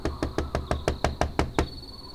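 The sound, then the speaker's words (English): A steady series of about nine sharp knocks on the door of the final house on the edge of town, evenly spaced, with a faint high ringing tone lingering underneath and no voices. “Joseph knocked on the door.”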